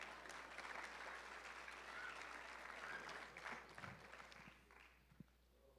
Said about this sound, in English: Usually I have people clap when I take a drink of water so it doesn't seem awkward. So could you clap real quick?